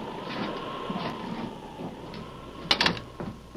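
An unlocked door clicks and scrapes open in a short mechanical burst over a steady low rumble of wind and storm noise, with no one speaking.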